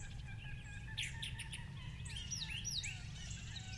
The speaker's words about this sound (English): Later, at the edge of the broad river, I was stopped dead in my tracks by the number, diversity, and volume of bird calls exploding in the air around me. oyster catchers, buntings, plovers, woodpeckers. This is an actual recording.